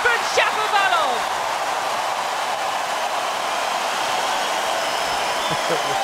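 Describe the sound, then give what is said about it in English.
A tennis crowd roars and cheers after Shapovalov wins a rally against Zverev with a volley winner, a loud, steady wash of applause and shouting that holds for several seconds, with a few sharp whistles at the start. “Well, the noise from the crowd tells you everything you'd want to know.”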